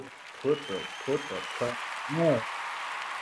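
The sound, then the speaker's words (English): A short five-second hand clap given in congratulation: steady, hissy hand clapping runs throughout, with short voiced bursts like vocal sounds or laughter breaking in over it. “Now, JX, I know your Denver Nuggets won an NBA championship, so let me give you a little 5-second hand clap.”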